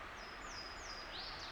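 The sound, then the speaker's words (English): High, thin bird notes slide and ring over a steady rush of a stream at the bottom of a hollow, with a brighter run of song near the end: a junco's bright trill and a Louisiana waterthrush's high-pitched song. “The bright trill of a jonco and the high-pitched song of a Louisiana water thrush.”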